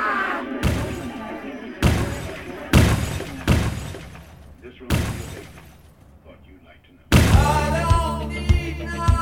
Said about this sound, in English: I opted for something more tasteful and subtle than that and edited in, from a sound effects CD, the sound of a missile landing